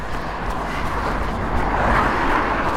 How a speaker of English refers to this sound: A couple more cars, but really, it's otherwise desolate.